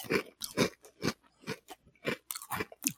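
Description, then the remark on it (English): Crunching of an oven-baked garlic and ranch Ruffles potato chip being bitten and chewed, a steady series of about eight sharp, crisp bursts in a quick rhythm with no talking. “Let me bite into one. Let me test the crunchability on here.”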